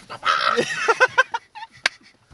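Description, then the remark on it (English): A man's voice imitates a chicken from a Snapchat video, with a loud, shrill drawn-out squawk followed by a quick run of choppy clucks that trail off into softer bits, fairly loud. “Is that the one where like he finches and the next thing the chicken goes?”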